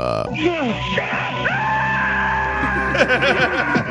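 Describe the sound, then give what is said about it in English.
A man screams loudly in a played clip of the character Hawk, his raw voice wavering and cracking through several drawn-out cries over a few seconds, with a steady background din underneath. “Not one Hawk scream should we be missing out on.”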